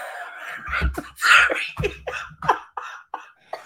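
A loud coughing fit from a woman: a rapid series of harsh, hacking coughs with throaty strained breaths between them, tapering into shorter, weaker coughs toward the end, with no talking.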